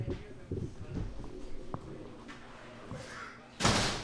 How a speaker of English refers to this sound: Let me shut the door.